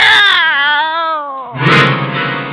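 A cat, just brought in a big gift box, gives a long, drawn-out meow with a wavering pitch, then breaks into a harsher, raspier yowl. Both are loud, with no talking.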